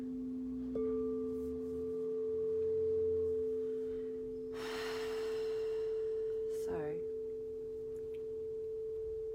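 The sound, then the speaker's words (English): A rubbish truck works outside, its steady mechanical whine droning throughout, broken by a loud hissing burst midway and a brief wavering squeal near the end; someone speaks a single word. “Apologies if you can hear my rubbish truck, the dulcet tones of my rubbish truck.”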